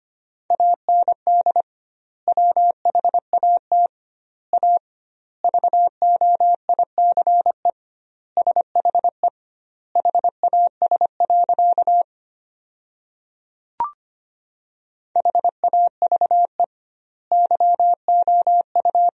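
Morse code at 25 words per minute with doubled word spacing, sending sentences made from the 500 most common words: a steady mid-pitched tone keyed in rapid dots and dashes, grouped into words separated by long pauses, with one brief click partway through.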